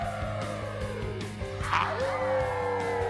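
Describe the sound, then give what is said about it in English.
Several human voices howl together in long, drawn-out wavering tones, overlapping, with one voice sliding upward partway through before the chorus settles into a steady, sustained pitch. “One hand to your ear. The other ear. Now howl.”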